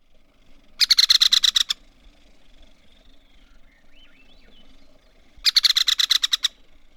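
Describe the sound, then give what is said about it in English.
An American three-toed woodpecker gives two loud, rapid rattle calls, each a quick burst of about a dozen sharp notes lasting under a second, separated by several seconds of quiet forest ambience. “Often, but not always, the American three-toed woodpecker rattle call contain individual notes that are doubled. This creates a stuttering rhythm.”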